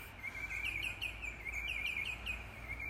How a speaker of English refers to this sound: God, look and listen to these birds.